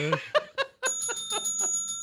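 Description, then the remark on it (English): Laughter bursts out, then a bell, rung as a sound effect, rings once with a bright, sustained metallic tone that hangs in the air while the rhythmic laughter continues underneath it. “That's the only physical sound effect we have.”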